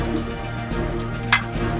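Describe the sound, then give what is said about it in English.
Dice are rolled: a few faint taps followed by one sharper clack near the end, over a steady low hum with no talking. “I'm going to go ahead and roll to see who he hits.”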